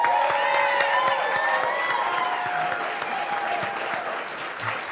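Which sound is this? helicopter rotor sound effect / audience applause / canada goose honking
audience applause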